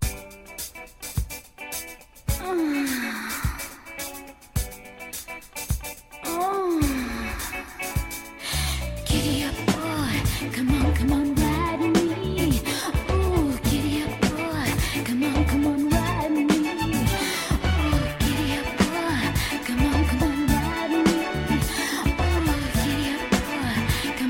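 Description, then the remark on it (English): A disco song plays from a recording, opening with a sparse intro of gliding tones before a steady, driving beat and dense instrumentation kick in and carry on loudly to the end, with no talking. “That was not the song I expected. That you are first right. Of all, that is disco.”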